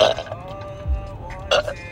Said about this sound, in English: Damn, these are just drunk burps at this point.